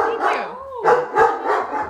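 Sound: dog barking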